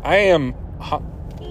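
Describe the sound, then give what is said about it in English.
A voice imitates a car horn with one loud, nasal honk lasting about half a second, followed by a fainter, shorter vocal sound against a quiet background. “I'm honking my own horn right now.”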